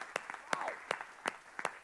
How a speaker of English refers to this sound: Thank you. Let's give the Lord a hand clap of praise right there. That's good stuff.